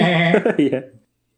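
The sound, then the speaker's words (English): A person vocally imitates a cartoonish Peter Griffin alarm, a single loud, buzzing sustained tone lasting about a second with a wobbling pitch before it cuts off into silence. “I want a Peter Griffin alarm that just goes...”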